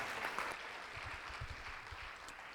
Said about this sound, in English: I just feel like that needs an applause. Come on.